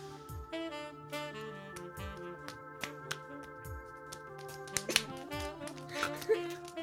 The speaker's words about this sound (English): Those claps sounded too wet.